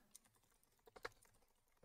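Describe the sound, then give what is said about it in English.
Keys clack on a clacky computer keyboard in a quick, uneven run of taps, fairly quiet, with a few sharper, louder strikes bunched in the middle and no voices. “Clack, clack, clack. Like a clacky keyboard.”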